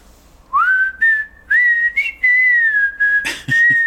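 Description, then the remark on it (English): A person whistles a slow, sustained tune, notes gliding and held in a steady melodic line, with brief breathy noises near the end. “You whistle.”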